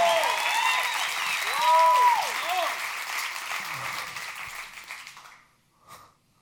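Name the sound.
audience clapping hands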